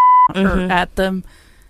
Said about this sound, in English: Cut that. Bleep that. Yeah, bleep that.